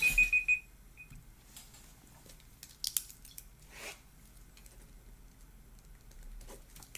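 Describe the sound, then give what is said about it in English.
A debate timer alarm goes off at the start, marking the end of an opening statement, with a quick burst of shrill electronic beeps and one short final chirp, then only faint rustling and a few soft clicks follow. “That's time.”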